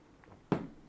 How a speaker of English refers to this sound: Quick sip of my drink